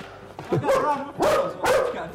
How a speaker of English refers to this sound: Dog barking at you.